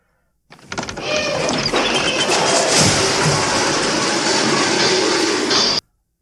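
In a movie scene, Anthony Michael Hall as the geek walks into a garage and knocks over a shelf full of hubcaps, a loud metallic clatter and rattle that keeps tumbling for about five seconds before stopping abruptly. No voices.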